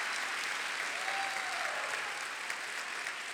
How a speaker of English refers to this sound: If you're happy this morning, that you got the gift of the Holy Spirit, you ought to clap your hands and give God praise. Oh, yes. Hallelujah.